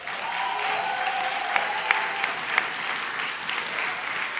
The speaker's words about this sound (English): Good morning, everyone. we actually are going to start off with an applause for our brother,